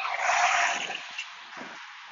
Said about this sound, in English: And the weekends are great for doing stuff for me that, oh, there's some really noisy truck coming.